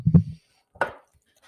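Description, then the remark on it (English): Batter being mixed in a bowl until smooth after all the ingredients, including hot butter, were added: a dull, low thump of thick mixture, a short pause, then a brighter wet squelch, with quiet gaps and no talking. “Now I am mixing it until smooth.”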